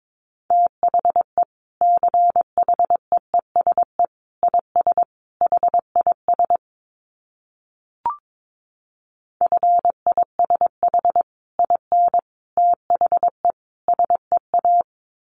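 Morse code beeps in a steady mid-pitched tone, keyed at 22 words per minute into quick runs of short and long pulses at a brisk pace, broken by a pause and a single click midway.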